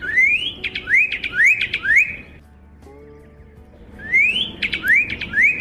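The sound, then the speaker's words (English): A pyrrhuloxia (desert cardinal, Cardinalis sinuatus) sings a clear series of rapid, upslurred whistled notes in two bursts separated by a brief pause, loud with no talking. “Just as the Pyraloxia's appearance is similar to the northern cardinal's, so is its song.”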